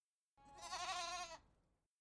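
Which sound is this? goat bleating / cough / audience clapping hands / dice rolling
goat bleating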